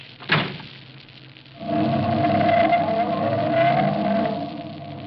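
A sharp thump like a car door closing, then the engine of a new car starts and runs with a steady rumble and a droning hum until the end.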